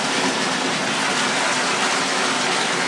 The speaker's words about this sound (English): I intentionally drew the bath so as not to be too hot, but it's a little cold. I'm going to have to run some warmer water into the tub.